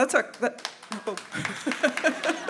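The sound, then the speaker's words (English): An audience breaks into applause, with a steady patter of claps mixed with laughter and scattered voices, fairly loud and lasting a couple of seconds. “They're applauding sin, just to clarify.”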